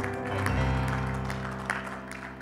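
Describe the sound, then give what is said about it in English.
An audience gives a hand clap of praise to the Lord as it is being seated, a dense, steady patter, mixed with sustained organ-like chords that hold underneath throughout the short burst of applause. “Give the Lord another great hand clap of praise as you're seated.”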